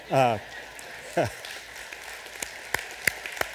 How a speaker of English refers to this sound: Okay, you celebrated by clapping. Yes, it is a praise